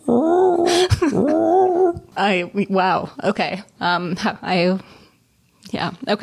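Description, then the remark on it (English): A person imitates a mournful manatee call with a drawn-out, wavering moan lasting about two seconds, fairly loud, followed by several seconds of ordinary talking. “The sound of like a manatee, the lone mournful whale of manatee.”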